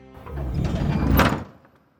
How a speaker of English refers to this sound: The door closes.